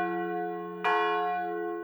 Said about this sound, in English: The sun cast the shadow of the church onto the mountain behind it as the bells called the unusually effervescent monks to Compline.